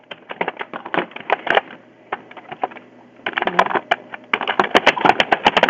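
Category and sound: household object, typing on a keyboard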